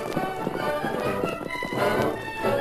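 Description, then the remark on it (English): Hoofbeats of the horses Silver and Scout galloping, ridden by the Lone Ranger and Tonto: a quick, steady, loud drumming of hooves throughout, with no one speaking. “Come on, Silver. Get him up, Scout.”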